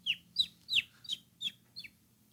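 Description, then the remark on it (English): A person imitates a bird with six quick, high chirps in a steady rhythm, each one sliding downward in pitch, fairly loud, with no talking. “You've heard my bird noises.”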